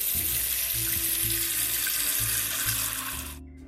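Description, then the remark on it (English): A steady, loud rush of tap water pours into a big pot being filled with water to cook pasta, a continuous hissing stream with low resonant rumbling, cutting off abruptly near the end. No one speaks. “And the next thing I'm going to do is get a big pot, and I'm going to fill that with water to cook our pasta.”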